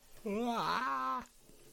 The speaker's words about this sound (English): It's a good yawn. You're welcome for that yawn, by the way.